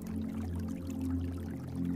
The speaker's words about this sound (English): You prepare yourself in the adjoining bathroom and enjoy a brief shower with a rainfall shower head that cascades warm waters over your scalp, your face, and shoulders.